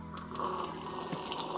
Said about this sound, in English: I take a little sip from my espresso. Can you sip it like in an Italian way?